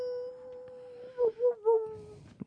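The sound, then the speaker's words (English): A person imitates a coyote howl up close: one long, steady wail, then three quick swelling yips, with a brief sharp sound at the end. No talking. “You know, I used to be a coyote, but I'm okay now.”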